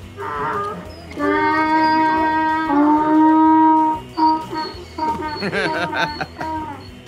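A domesticated donkey gives a loud, drawn-out bray with strong harmonic honks, rising and falling over several seconds, followed by rougher wheezing breaths and squeaky calls.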